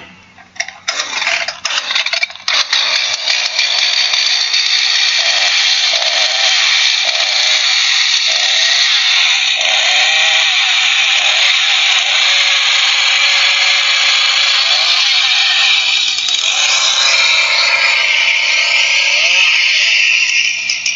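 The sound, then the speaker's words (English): A chainsaw runs loud, its harsh, buzzing engine whine holding steady for about twenty seconds with slight shifts in pitch as it revs. No one speaks. “It's a special medical weapon known as the chainsaw.”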